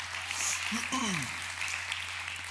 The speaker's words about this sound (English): And yeah, go ahead and clap.